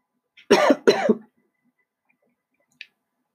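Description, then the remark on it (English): Two rough, hoarse coughs in quick succession, fairly loud, from someone speaking in a weak voice, followed by quiet and a single faint click near the end. “There are two such valleys, Vitaly said in a weak voice, coughing.”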